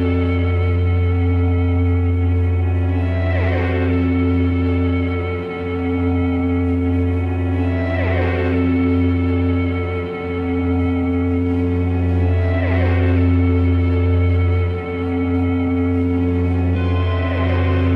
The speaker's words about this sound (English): Basically guitars stacked on top of each other through echo plexes and tape delays and all sorts of different things.